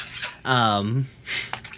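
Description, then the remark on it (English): Dishes and cutlery clatter in a few short clinking bursts as someone does the dishes, with a sustained voice-like tone rising briefly in the middle of the washing-up noise. “who's doing dishes?”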